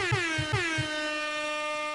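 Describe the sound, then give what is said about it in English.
A loud, brassy air horn blares continuously for about two seconds, its pitch dipping and restarting in a quick stutter early on, with a few deep thumping pulses underneath. “Let me get this air horn with you the raid.”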